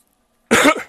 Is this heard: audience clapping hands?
no